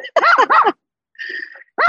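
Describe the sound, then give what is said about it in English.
A neighbor's dog gives two quick, loud barks, then a brief higher-pitched whine after a pause, and another bark starts just as the sound ends. “And now I have the neighbor's dog coming to see me.”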